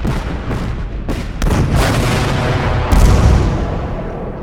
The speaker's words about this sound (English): Artillery, they were the big cannons of the battlefield.